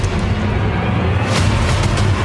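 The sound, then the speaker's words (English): An incoming RPG rocket explosion from 12 o'clock: a heavy, sustained low rumble with a sharp blast cracking through midway, followed by scattered crackling bursts, loud throughout with no voices. “RPG's 12 o'clock. Incoming!”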